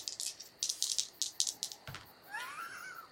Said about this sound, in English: I blame the padding on this table. Because there's been a lot of ones rolled over these wild dice tonight.